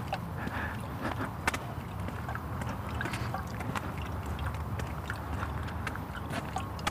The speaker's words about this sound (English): Trees are dripping. They're condensing the water out of the fog. And it's thick enough that it's dripping water.